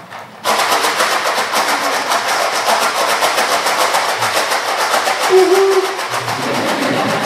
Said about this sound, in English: The other great thing they used to do with pasta, and I would never do this now, because you get trains, but they used to use this for a train, so you have a chuk-chuk-chuk-chuk-chuk-chuk of a train.